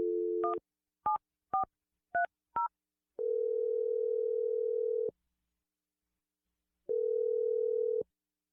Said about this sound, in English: I'm going to dial the number for you and let you make your Awkward Tuesday phone call. Here we go.